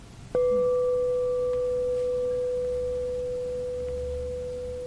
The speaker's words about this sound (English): Can you hear the bell now? Ephemeral. Belonging to nature. It appeared and disappeared.